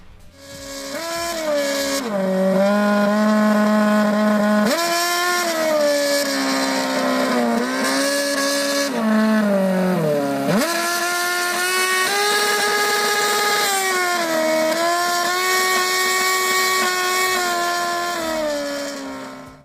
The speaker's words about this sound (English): Red Bull Racing took one of its Formula One cars to New York City to sing the national anthem with the New York skyline and the Statue of Liberty in the background. You heard me right, to sing the national anthem.